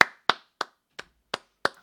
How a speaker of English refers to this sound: Well, that's going to be it for a show, everybody. Let's clap it out, chat.